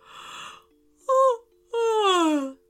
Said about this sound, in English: "Lexi," he whispered. Lexi yawned.